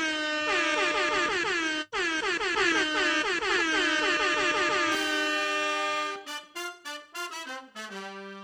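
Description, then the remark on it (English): A loud air horn sound effect blasts repeatedly in rapid succession, the blaring tones stacking over each other before breaking into a string of short, choppy honks at the end. “Can we get the air horn for our 100th episode?”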